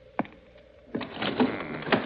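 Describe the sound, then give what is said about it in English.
A card-room window being closed: a single sharp click, a brief pause, then about a second of grinding, rattling scrape that ends in another firm knock. No one speaks. “I see the window's still open. The housekeeper left it that way, I presume? Yes, she says it was locked on the inside when she came in.”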